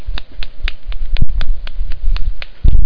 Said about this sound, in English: Do your one-hand clap.